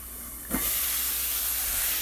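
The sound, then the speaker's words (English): A soft clunk as the lid lifts off a pot of zucchini, then a steady hiss of escaping steam that continues evenly until the end, with no voices. “All right, lid is off our little zucchini, and I'm just stirring them around.”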